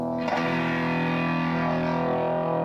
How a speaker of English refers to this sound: Distortion pedal, which overloads the signal. Overdrive the sound and make it sound pretty rude.